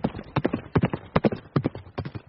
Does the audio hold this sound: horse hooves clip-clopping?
yes